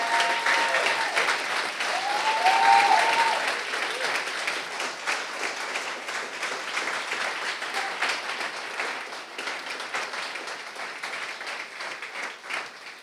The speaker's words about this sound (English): So I want us, for y'all to stay seated, and if you would be so kind as to stand up and clap for them and show them honor for the way that they have served our church. Woo!